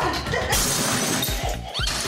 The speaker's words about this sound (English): I'm breaking the glass.